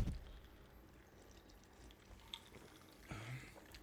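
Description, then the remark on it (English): Faint peach Arizona iced tea pouring into a glass to top off a cocktail of peach vodka and Licor 43, a soft continuous trickle with a light clink partway through and a brief louder splash of pouring near the end, with no voices. “So we've got 2 ounces of peach vodka, half an ounce of liquor 43, and then top that bad boy off with peach Arizona iced tea.”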